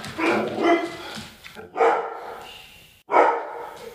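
Dogs bark at the doors in three loud bursts, the first a flurry of overlapping yaps, then two more volleys after brief pauses, with no one speaking.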